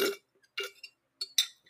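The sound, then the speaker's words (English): A few quick, wet slurps from a drink, four or five short hissy sucking bursts with brief gaps between them, fairly quiet and with no talking. “Mood, not me slurping.”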